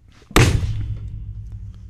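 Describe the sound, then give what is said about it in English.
A single heavy blow of someone knocking on a door: one loud, booming thud that cuts in abruptly and leaves a low rumbling decay. No voices. “Think someone's knocking on the door.”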